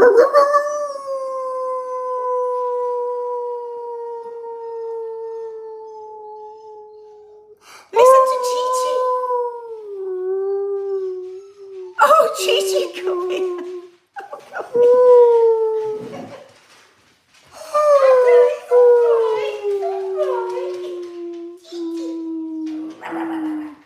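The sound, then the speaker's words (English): A voice imitates a dog's howl: a long, loud, wavering note that slowly falls, followed by several shorter howls broken up by brief noisy bursts. “You're sending my dogs mental, says Vicky Waiting.”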